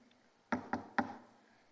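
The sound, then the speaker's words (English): Three firm knocks on a wooden door, evenly spaced about a quarter second apart, fairly loud, with a short resonant decay after each and no voices. “Stuff knocks, all right?”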